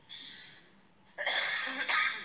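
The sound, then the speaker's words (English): A person coughs: a breathy, raspy burst followed by a louder, harsher fit of coughing, with no talking. “I'm sorry, I don't know why I got tired. I got started to cough.”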